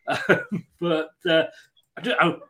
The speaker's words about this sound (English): Just got to say, excuse me, I've got a really bad cough.